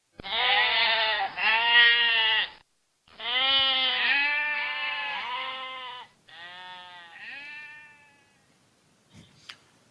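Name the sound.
goats bleating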